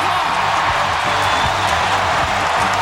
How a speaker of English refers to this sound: How juiced is this crowd? I was just going to say that, the crowd is just fired up.